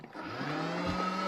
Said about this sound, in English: pop in there about a dozen graham crackers. I suppose pop on the top, and watch this. Look how the Bullet Express breaks down those graham crackers to the perfect consistency.